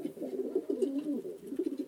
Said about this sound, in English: From the deepest wells of silence, the wood pigeon drew its bubble of sound.